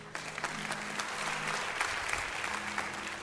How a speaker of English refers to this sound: 5% of the people are clapping.